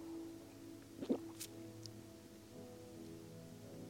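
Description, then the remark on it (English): A glass of water is grabbed and handled: a brief liquid slosh, then a couple of light, quiet clinks over a steady low electrical hum, with no one talking. “I'll grab a glass of water.”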